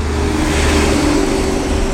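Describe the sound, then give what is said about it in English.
A huge truck rumbles loudly, its heavy engine and road noise forming a steady, broad roar that fills the whole moment with no voices. “I'm sorry, that was a huge truck.”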